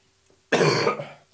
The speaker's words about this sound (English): I've got a cough. Have you? I hadn't noticed.